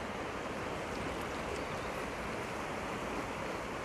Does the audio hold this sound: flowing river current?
yes